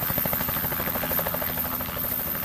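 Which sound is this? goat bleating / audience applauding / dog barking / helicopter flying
helicopter flying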